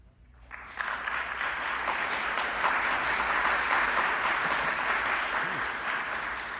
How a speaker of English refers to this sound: This is an awfully good audience. You applaud almost every poem.